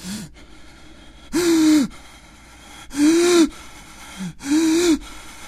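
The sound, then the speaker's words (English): Three loud, voiced gasps come at a steady rhythm about a second and a half apart, with softer breaths in between, like a man hiding under the bed covers panting heavily in fright. “ran into his bedroom, slammed that door, and pulled the covers up over his head in the bed, breathing heavily.”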